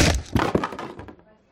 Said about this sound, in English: And I broke another chair.